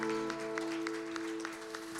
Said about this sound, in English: Can you give the Lord a hand clap of praise this morning?